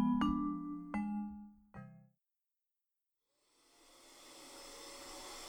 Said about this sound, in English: turn that vacuum off for a minute, and come over here, will you?